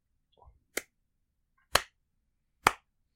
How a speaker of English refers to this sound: But in the meantime, you hear coming from the opposite chamber across to the underground river a slow clap.